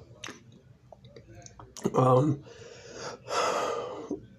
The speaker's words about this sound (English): This breathing sucks. I'm kind of falling apart, but I'm stuck together with, Gorilla Glue and duct tape and everything else.